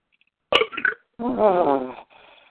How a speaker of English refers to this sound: That was a Baja Blast belch.